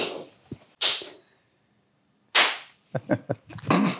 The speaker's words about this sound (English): The old clap sync.